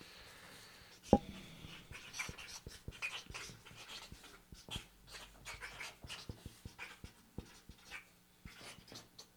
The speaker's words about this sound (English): You can mute us while we type if you want. No, right, I like it. Type yeah, I'm typing.